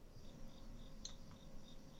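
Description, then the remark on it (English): Faint crickets chirp outside a house in a steady, repeating pattern, thin high pulses over a low background hum, quiet, with no one talking. “I hear crickets outside your house.”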